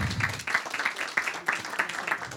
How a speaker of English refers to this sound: One more round of applause for Bruce, please.